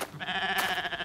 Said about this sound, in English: Was that a... The goat. And it's wearing Auntie PJ's necklace this time.